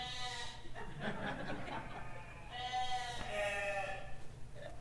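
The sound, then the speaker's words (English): Sheep bleat repeatedly, several wavering, nasal cries overlapping one another, loud and insistent with no pauses between calls. “Woman, control your sheep.”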